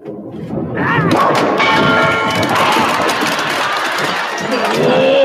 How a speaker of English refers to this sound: Until Behemoth and Lunch Encounter Monster drop a set of bowling pins onto his head, he doesn't believe he's in the right place.